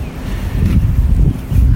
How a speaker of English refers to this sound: Ooh, crunchy snow falling through.